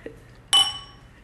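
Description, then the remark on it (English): A single bright glass clink rings out and fades over about half a second, preceded by a faint soft tap, as someone sips a drink from the glass, with no talking around it. “I'm sipping.”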